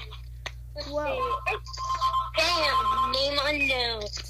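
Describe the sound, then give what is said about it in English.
A phone ringtone rings for an incoming call, a bright electronic melody with a sustained tone that swells and keeps repeating for several seconds. “My phone's ringing.”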